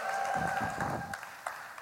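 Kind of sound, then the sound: crowd, audience applause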